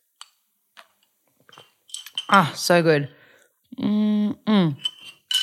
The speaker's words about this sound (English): Excuse me, I'm just having another swiggle of my cough wines. Can you hear? Oh yeah, that's my glass straw.